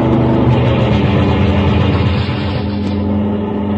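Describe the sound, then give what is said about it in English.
A car rounds a bend and comes fast down the highway, its engine roaring steadily in a loud, continuous low rumble with rushing road noise. There is no talking over it. “another car rounds the bend and comes down the highway fast.”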